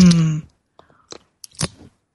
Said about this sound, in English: For all my friends who love to sip our tea or spiritual espresso together, this sip is for you.